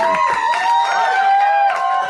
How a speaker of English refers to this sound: Won't you please keep those applause going and welcome to the stage the mayor of Harmontown, Dan Harmon.